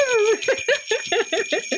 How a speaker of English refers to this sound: This episode is going out on Christmas Eve, so of course the jingle bells are back, not in the studio, but in my very small box room office.